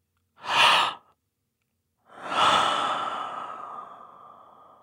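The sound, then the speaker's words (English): Two breathy human breath sounds with no talking: a short sharp inhale, a pause, then a longer airy breath that swells and slowly trails off. “And then there are a lot of sounds where it's clearly identified as human breath. So inhalations and gasps.”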